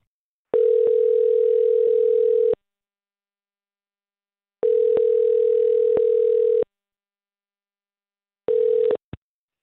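A phone line ringing on the caller's end as radio station Mix 94.7 calls a listener for its Waiting by the Phone segment: two long, steady electronic ring tones separated by silence, then a third ring cut off abruptly as the call connects. No voices.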